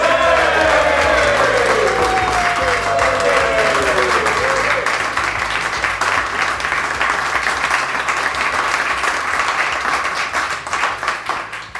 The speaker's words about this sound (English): I know it's not a competition, but one person did get a better cheer than the other. So you two, up your game.